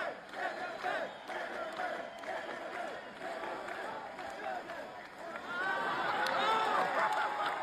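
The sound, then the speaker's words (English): A large crowd roars and cheers after being given the middle finger, a dense wash of many voices shouting together that holds steady, then swells louder toward the end. “He gave them the middle finger. Crouch cheering.”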